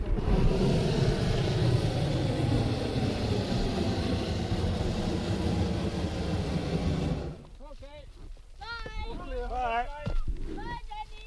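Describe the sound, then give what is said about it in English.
A loud, steady roar of a modern hot air balloon's burner, as the balloon is being prepared, fills the first seven seconds, then cuts out, leaving voices talking over a quieter background. “Today, with modern hot air balloons, there is less formality, but a little preliminary noise.”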